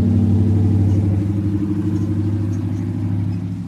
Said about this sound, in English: Big truck coming by if you hear.